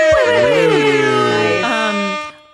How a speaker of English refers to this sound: can you put like a cool trumpet air horn sound after this?